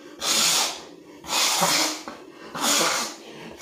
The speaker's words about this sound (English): Anyway, I had to blow my nose on camera because I'm insecure about shit.